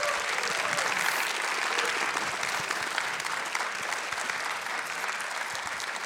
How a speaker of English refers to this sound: Well, thank you, everyone, for coming out tonight. Just another round of applause for everybody tonight.